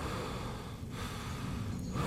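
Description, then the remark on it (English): Heavy, noisy breathing of a caller over a telephone line, with a couple of drawn-out breaths in and out over about two seconds. It's steady and fairly quiet, and no one speaks. “Linda answered the phone, only to hear the heavy breathing of the caller on the other end.”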